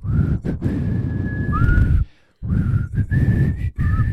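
A person whistles a tune up close, holding long steady notes with a few sliding pitch changes, breaking off briefly midway before the melody resumes over a breathy, rumbly background.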